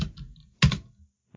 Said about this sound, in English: Todd's angry at his keyboard. Oh, it's a mechanical. It's right here under the microphone.